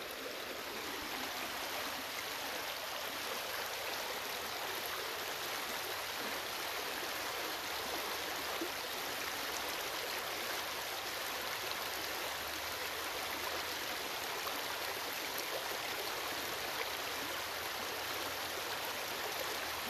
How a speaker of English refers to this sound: So let's enjoy the sound of the water.